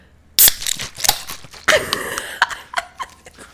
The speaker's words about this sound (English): I have a vitamin water because I am back on my gym regimen. So I am not popping this case. I will shake my water, though. Ready?